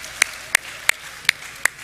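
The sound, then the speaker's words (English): Five sharp handclaps at a church service, a round of applause for parents and grandparents, in a steady, even rhythm, each a crisp bright smack over a low background hiss, with no voices. “Let's give another round of applause to our parents, grandparents.”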